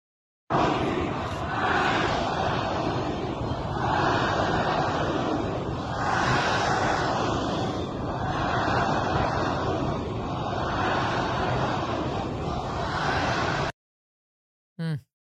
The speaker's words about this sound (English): The protesters chanting death to Israel, death to France, death to England, death to all the Westerners.